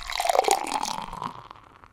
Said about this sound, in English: Okay, we are back, and we have traveled through time and space to be here again after just a subtle... pouring of a new beer. Yeah, time traveling beer pour.